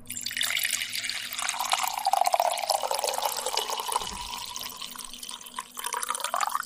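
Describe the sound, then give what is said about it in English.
Coffee poured steadily into a cup, a continuous splashing stream whose pitch climbs as the cup fills, with a brief pause near the end before a final trickle. No voices. “I sat here and listened to 6 takes of coffee pours.”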